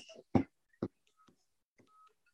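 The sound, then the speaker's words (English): Quiet electronic telephone tones, a few short beeps and a longer steady tone, mixed with two sharp clunks as a handset is handled and a phone call is hung up, with no talking. “Sorry about that. I had a phone call. I'd hang up on him.”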